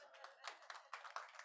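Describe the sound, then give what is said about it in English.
An audience claps for the Lord Jesus together in a brisk, steady rhythm, the sharp overlapping hand claps loud, filling the short moment with lively applause. “Clap for the Lord Jesus.”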